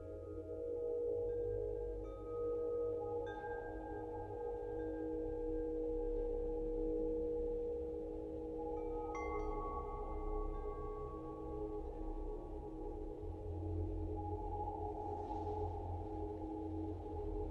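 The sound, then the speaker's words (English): Soft ambient music with a steady humming tone, split in stereo into the right and left channels and embedded within the music, joined now and then by brief higher shimmering notes; the sound stays even and continuous throughout, with no voices. “It's just split stereo into the right and left and embedded within the music.”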